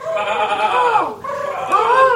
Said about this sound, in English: Why is there a sheep in the forest?